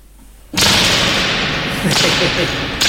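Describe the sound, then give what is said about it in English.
After a brief silence, a Caribbean-style music track bursts in abruptly and plays loud and dense, with a bright, hissy wash over a steady low-end pulse and no voices. “It's more Caribbean, too. It's like great music, different vibe.”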